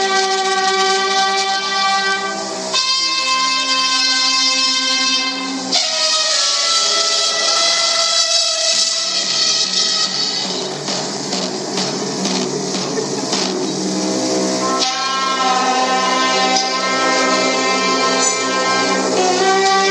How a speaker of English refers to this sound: I even Googled something to see if I could find something of a children's orchestra playing, having a go at playing together